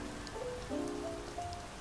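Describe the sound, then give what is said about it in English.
Steady rain falls on a hard surface, a soft continuous hiss of patter with no pauses. Faint tonal hums drift through in the background, and no one speaks. “I did not know it was gonna rain today.”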